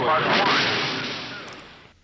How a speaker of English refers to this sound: I had to cut out a lot of the rocket noise because they got really loud, and I didn't want to kill people.